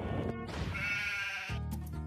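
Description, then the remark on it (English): A sheep in a sheep paddock in Australia, in the film The Dish, bleats loudly in a long, wavering cry, followed by a second shorter bleat starting, with no talking. “What's it doing in the middle of a sheep paddock?”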